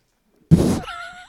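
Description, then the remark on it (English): A single dull, heavy thunk as headphones are knocked off and land, followed at once by a brief wavering, tonal whine that fades out. No one speaks. “You knocked my headphones off.”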